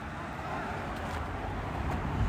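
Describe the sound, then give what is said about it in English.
Steady roadway rumble with cars whooshing past, a couple of brief passes standing out over the constant low roar, while indistinct voices murmur underneath. “Nah, bro, it's like cars the other way.”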